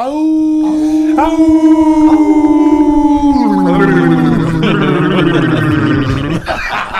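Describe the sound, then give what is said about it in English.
A person imitates a coyote howl: a long, steady vocal wail that bends downward partway through and breaks into a rough, gargling warble before fading, with no one talking over it. “Dude, coyote in the lip shirt.”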